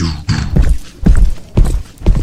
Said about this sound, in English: And you just hear big, huge footsteps come in.